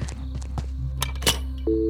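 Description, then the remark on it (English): Clicks and thunks of a handset being handled, then a steady telephone dial tone starts near the end and hums on without a break. “I've got a dial tone.”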